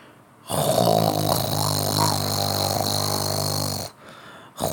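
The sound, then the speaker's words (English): A man's loud, rumbling snore drones steadily for several seconds, deep and buzzing like a motorboat engine, then stops abruptly before starting again right at the end. “snoring like a goddamn motorboat.”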